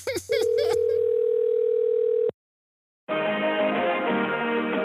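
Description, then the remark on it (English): A phone line rings once with a steady, fairly loud two-second ringback tone, briefly overlapped by other sound at the start, then falls silent before dense voices or sound come in. Bill Clinton making a prank phone call to an auto shop about car trouble. “Here's Bill Clinton making a prank phone call.”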